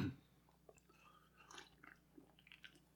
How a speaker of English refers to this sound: Excuse me. I can't have Chinese food without pop. That's... So I'm slurping away at a Sprite.